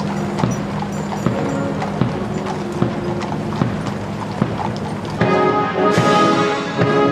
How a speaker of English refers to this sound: For me, the thing I remember the most was the sound of the horse's hooves going along the pavement.